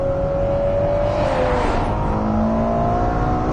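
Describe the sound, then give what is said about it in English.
An F140 GA V12 sports car engine revs hard and loud out to nearly 9,000 RPM, its high whining tone climbing and shifting as it screams up through the range for a few seconds, with no talking. “Revving it all the way out to nearly 9,000 RPM.”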